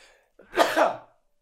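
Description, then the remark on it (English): A single loud sneeze bursts out in two quick parts, a sharp intake then an explosive release, lasting under a second with no talking around it. “It makes me sneeze. I just think about this”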